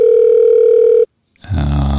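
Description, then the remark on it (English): A steady electronic telephone ring tone hums for about a second, then cuts off abruptly as the phone call goes through to voicemail; after a brief silence, a low, rough voice-like sound starts up. “Yeah, I think I think you are going to voicemail.”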